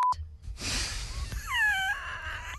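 A short, steady, high-pitched censorship bleep sounds at the very start, followed by a loud hiss of noise and a wavering, wail-like tone that rises and falls.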